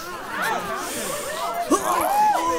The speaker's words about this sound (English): Everybody sniff!